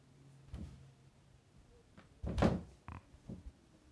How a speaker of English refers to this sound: They're knocking on the door. I'm just gonna keep going. She needs something.